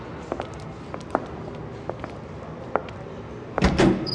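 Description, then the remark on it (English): A scattering of soft footsteps crosses a room, then the lobby doors of a pageant venue swing open and shut with a louder, brief clatter near the end. Nobody speaks. “Now, go right through those lobby doors there.”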